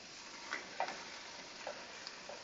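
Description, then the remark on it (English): Steady sizzling of food frying in hot olive oil in a pan, a continuous crackling hiss dotted with small pops and spits, with no one talking. “This will keep sizzling nice in the pan.”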